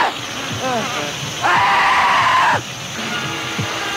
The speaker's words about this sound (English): Takes just 10 seconds for the flesh eaters to strip the last bit of flesh from any living thing. Listen to those screams, they're eating him alive.